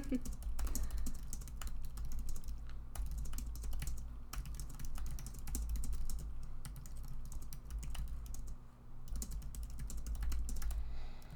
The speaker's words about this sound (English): Okay, give me 2 seconds. I'm typing out a thought.